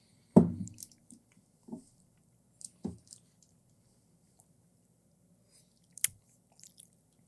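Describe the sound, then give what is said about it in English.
A crisp bite into a cookie, followed by a few soft, crunchy chewing sounds spaced out over several seconds, with a sharp click near the end and otherwise quiet. “That cookie is so good.”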